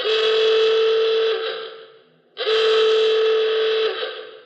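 A klaxon horn sounds twice, each a loud, harsh, buzzy blast lasting over a second with a rising swoop at the start, separated by a short gap. No one talks.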